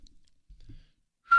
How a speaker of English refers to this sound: So you can't whistle. No. Try it right now. That's pretty terrible. Hold on.